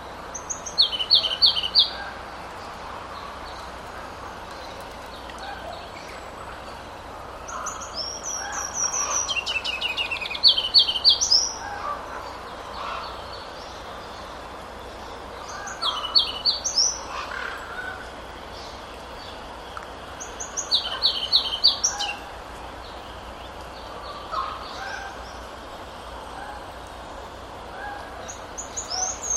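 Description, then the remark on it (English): A ruby-crowned kinglet, recorded at Totem Park in springtime, sings about five high, thin bursts with slight pauses between them, each a quick run of sharp, tinkling notes, over a soft background hiss. “Once again, that was a Ruby Crown Kinglet, that one recorded at Totem Park in the springtime.”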